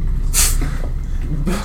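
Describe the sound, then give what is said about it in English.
A voice imitates loud snoring: two harsh, breathy snorts about a second apart, each with a hissing rasp over a low rumble, and no talking. “Begins snoring loudly.”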